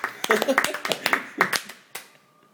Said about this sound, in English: Yay! Don't clap yourself.